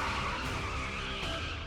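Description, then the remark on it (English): Car tires screech loudly as a vehicle peels away, a sustained squealing skid over a roaring engine, with no voices; kidnappers driving off with Patricia Hearst in the trunk on February 4th, 1974. “They threw her in the trunk of a car and drove off.”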